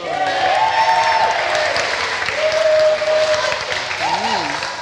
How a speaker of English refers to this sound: Who thinks that the... I can't remember the team names. Blue team. Blue team is the best design for the night. Wow, that's fairly extensive clapping.